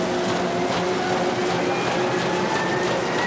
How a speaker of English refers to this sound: Know what this sound is? It's a newspaper press revving up to print the day's news. Unfortunately, it's a sound heard less and less in America.